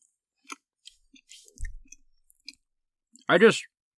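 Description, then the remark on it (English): Close-miked, sticky chewing of Swedish gummy candies into a microphone, with scattered wet clicks and smacks over a few seconds and a soft low thump midway, ending in a short voiced sound. “We're chewing some gummies.”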